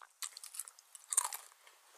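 Crisp, crackling crunches of someone chewing trail mix, a quick irregular series of bites with a louder burst in the middle, fairly quiet and with no voices.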